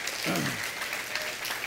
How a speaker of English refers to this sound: Yes, you can clap because it's your church, it's your ministry, it's your movement.